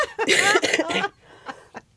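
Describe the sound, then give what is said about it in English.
A person coughs several times in quick succession, loud, the harsh bursts running together before a short quiet pause and one more sharp cough at the end. “There's going to be some coughing from ….”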